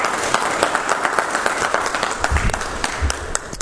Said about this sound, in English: Give Him a thanks right now. Give Him a hand clap right now because of that.